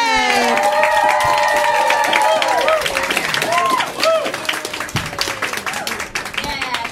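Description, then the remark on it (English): At a comedy show, a large audience claps and cheers loudly as the first comedian is introduced, with sustained dense applause, whoops and shouted voices rising over a continuous roar of hands that stays strong throughout. “Start clapping right now in a big way. Louder.”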